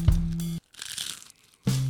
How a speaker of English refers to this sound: Now he's going to take another final crunch. Final crunch.